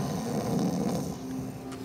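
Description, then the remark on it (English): A voice imitates a light snore, a soft, breathy rumble drawn out over about two seconds, steady, with no other talking. “Just this light snore.”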